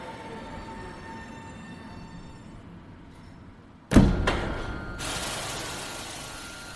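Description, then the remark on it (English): A train rumbles steadily along the rails, then a sharp metallic clunk and a second knock ring out before a loud, hissing rush takes over. No one speaks. “Rendezvous with the lovers, and board the train headed to fantasy.”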